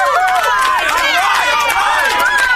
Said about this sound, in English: Thank you very much, fake studio audience. Thank you for your applause. I appreciate it.